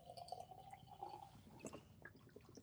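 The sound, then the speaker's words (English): Sunny Side Up beer from Pizza Boy pours steadily into a glass, a continuous gurgling splash with a faint fizzy crackle and a few drips, with no one talking. “I'm giving it a proper pour,”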